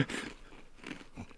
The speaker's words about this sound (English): It's the chip crunch. Is that sound effect? Yep.